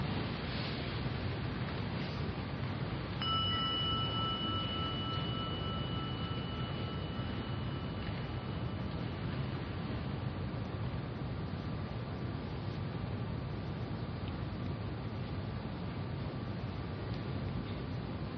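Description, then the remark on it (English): A gong is struck once a few seconds in during a guided meditation, and its bright, steady ringing tone hangs on and slowly fades over a constant background hiss. No one speaks. “Just close your eyes for a moment and just let the sound of the gong be an invitation right back here again.”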